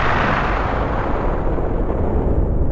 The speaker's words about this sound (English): In the beginning, there was, an explosion.